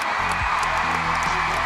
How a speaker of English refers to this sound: Hear the crowd roar.